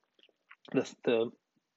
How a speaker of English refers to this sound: I'll take a little sip here.